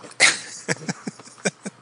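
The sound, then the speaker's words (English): A dog makes noise: one sharp, loud burst followed by a quick run of five or six shorter, choppy sounds, with no one talking. “I think the dog wanted to be part of the podcast.”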